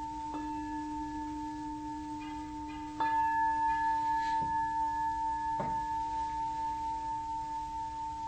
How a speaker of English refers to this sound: About three bells in my tradition to start, one to end.